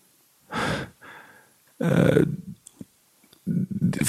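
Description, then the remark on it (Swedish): A voice imitates physical, whimpering crying: sharp, breathy gasps broken up by short, strained whimpering sobs, heard alone in a halting, uneven rhythm. “Fysisk gråt så här, gnyende.”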